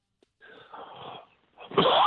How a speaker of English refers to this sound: My greatest fear, I think, is I'm going to cough again. No, I'm teasing.